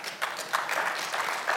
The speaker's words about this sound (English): That was a kind of a weak applause, but I completely understand.